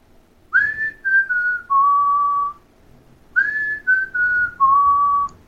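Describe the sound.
A person whistles a short descending melody of four notes, recreating a tune a man whistled while walking along a sidewalk, then repeats the same phrase after a brief pause; clear and steady, with no talking.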